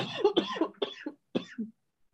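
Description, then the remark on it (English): A woman has a fairly loud coughing fit: a rapid cluster of several harsh coughs, then a brief pause and two more raspy coughs trailing off into silence. “She's still a lingering cough, y'all.”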